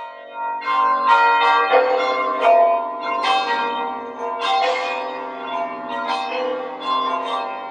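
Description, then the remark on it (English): Six abbey church bells peal together in a full, continuous ring, overlapping strikes sounding every half second or so with long resonant tones, loud, no voices. “it takes minutes and minutes that one bell is sounding, and then to have such it's such a joyful sound.”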